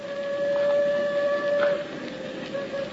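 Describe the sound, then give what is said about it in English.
A steam whistle sounds from far off in a canyon, a long sustained tone with harmonics over a low rumbling train approach, steady and moderately loud with no voices. “The train's almost here. No, not quite, Angel. You can hear it a long way in these canyons.”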